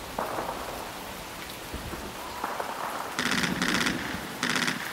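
Steady, heavy rain hisses and patters throughout, dense, with a couple of louder, harsher bursts of rattling noise breaking in toward the end.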